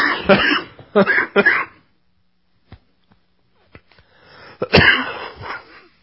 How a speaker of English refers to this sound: With a cough.